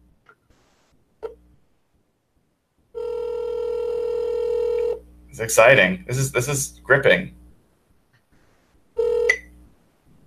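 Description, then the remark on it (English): A phone call rings out: a short beep, then a long steady ringback tone, a man briefly talking over the line, and another ring tone starting near the end. “And believe it or not, we're going to have to do this the old-fashioned way by actually dialing someone on the telephone, not even a text message.”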